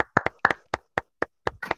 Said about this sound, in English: Okay. We get a round of applause for the live audience.